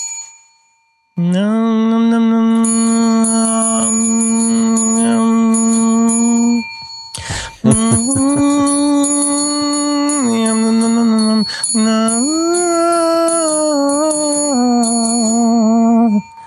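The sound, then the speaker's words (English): A bell rings with a long, sustained tone, loud, with a faint high tinkle above it. The ringing briefly breaks off partway through and then resumes, shifting slightly in pitch. “Bell.”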